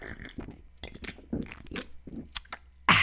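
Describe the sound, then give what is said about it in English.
A voice imitates gulping down a Pepsi, like in an old Pepsi commercial, with a run of wet mouth and swallowing noises, then a sudden breathy, refreshed 'ahh' at the end. “you remember those Pepsi commercials when Shaq would drink the Pepsi and he'd go like”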